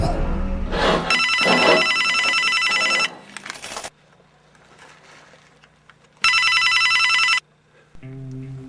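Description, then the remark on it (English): A telephone rings in two loud bursts, a long ring followed by a pause and a second ring, with a low hum and some muffled voice-like sounds between them. “We get a hint of it here with his next phone call.”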